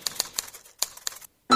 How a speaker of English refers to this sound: Okay, yeah, typewriters. Yeah, very good. That one's easier.